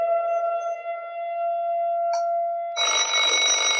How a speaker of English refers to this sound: The stupid alarm is really distracting, though.